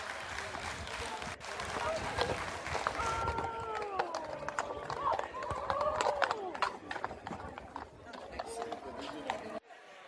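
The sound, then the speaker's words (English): Mounted police horses' hooves clip-clop in a quick, uneven rhythm on a street as the horses refuse to cross a pride design painted on it, amid a noisy outdoor scene with voices and crowd murmur mixed in, the clatter loud throughout. “The horse even knows better, for goodness sakes.”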